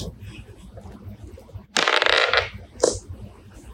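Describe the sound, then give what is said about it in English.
Dice clatter across a table in a loud rattle lasting under a second, followed by a single sharp click as they settle, landing on a 5, with a low murmur of background noise around it. “I literally rolled another 5.”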